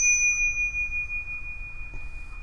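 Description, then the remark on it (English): A single bell is struck once and rings out with a bright, clear, sustained tone that slowly fades, heard alone over a faint low background rumble. “I'm pretty sure I only do this podcast now for the bell.”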